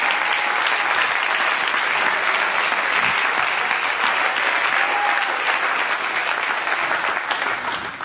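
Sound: audience clapping hands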